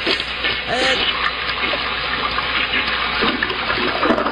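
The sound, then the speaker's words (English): A toilet flushes with a loud, sustained rush of swirling water lasting several seconds, with faint voices murmuring underneath. “That's a long That's flush.”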